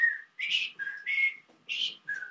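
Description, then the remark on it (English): A person whistles an imitation of a common birdsong: a clear run of short chirpy phrases, alternating lower steady notes with higher breathy trills, with no talking. “Why do birds always do that exact same whistle?”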